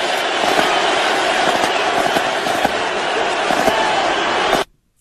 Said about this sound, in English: That was just 30 seconds of the ovation that Donald Trump and his wife received in Louisiana at the Superdome last night. Just an amazing, amazing, rousing reception.